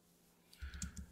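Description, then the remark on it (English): A short run of soft keyboard typing, four or five quick, uneven, faint key clicks, with no voices, as someone shares a live stream on social media. “Apologize, I'm gonna do some typing right now because I'm just sharing the live stream on my socials.”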